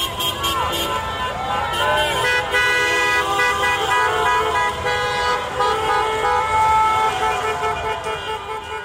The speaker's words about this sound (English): As I walked to my car, about an hour after the game ended, fans were still screaming and yelling and dancing and hugging in the streets. Here's some of what I caught going to my car.